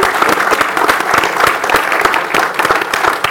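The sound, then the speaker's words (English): An audience bursts into sustained applause, dense overlapping claps forming a steady, loud wash of sound with no pauses for the full few seconds. “That's a clap for both of us.”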